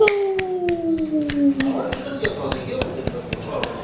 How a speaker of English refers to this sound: My clapping is not working. Oh, yeah, it's working now.